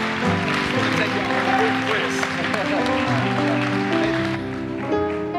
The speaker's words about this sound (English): Can we give our panel a big round of applause?